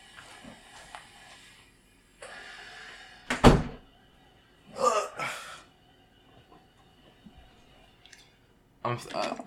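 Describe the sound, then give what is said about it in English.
A door is pushed shut with a single solid thunk, surrounded by shuffling and rustling movement noises and a few faint clicks. “Oh no. I gotta shut that door.”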